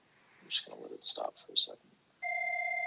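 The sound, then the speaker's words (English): A telephone rings with a steady electronic tone that starts after a few moments of someone talking, then holds on clearly and fairly loud until the end. “Let me let that stop ringing.”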